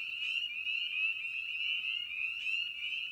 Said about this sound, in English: It's a good meditation for this time. The ability to adjust and hibernate, to listen to the world, and practice the patience of this little frog.